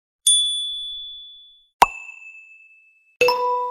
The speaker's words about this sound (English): Is that your phone?